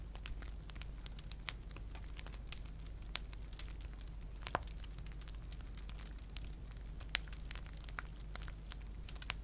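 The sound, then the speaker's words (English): A crackling fire pops and snaps in quick, irregular bursts over a low, steady rumble, with a few sharper cracks standing out. The sound is soft and continuous, with no voices. “Now releasing yourself, you go deeper into that sleep-filled state as you drift off and become unconscious from the sound of the crackling fire.”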